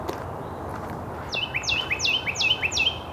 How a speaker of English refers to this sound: Carolina wren. Very close up. This one's only a few feet in front of me.